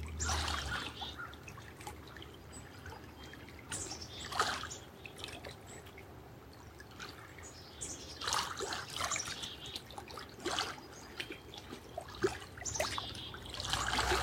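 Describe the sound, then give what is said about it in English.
Water trickles and splashes steadily over about fourteen seconds, with intermittent brighter bursts of bubbling, while a low rumble hums faintly underneath throughout. “Allow your heart to receive the sounds of the water.”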